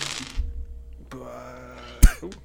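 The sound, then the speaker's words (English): A clatter of many dice tumbling across a hard tabletop, with scattered rattling clicks and one sharp knock near the end over a low background hum. “Oh, so many dice. That's a lot.”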